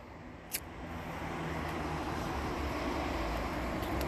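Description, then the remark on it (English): Steady road noise from cars moving along a street, a continuous low rumble and hiss with no clear individual pass-bys, plus one brief sharp tick early on. “There's cars and people passing through and everything.”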